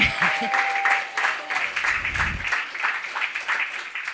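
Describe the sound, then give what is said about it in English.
An audience claps steadily for about four seconds, a dense patter of many hands with a brief low rumble partway through, fairly loud and fading slightly at the end. “You didn't have to clap.”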